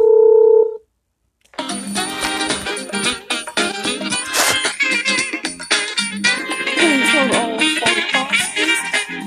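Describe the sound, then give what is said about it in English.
A loud, steady telephone dialing tone interrupts a broadcast for under a second, then cuts to brief silence before full, busy music starts up and carries on. “Hold all phone calls, please.”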